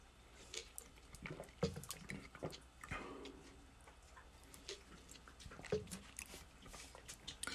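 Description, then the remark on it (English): Someone drinks a glass of water, with quiet sips, small wet mouth clicks and soft swallows spread over several seconds, and no talking. “Let me get a drink of water.”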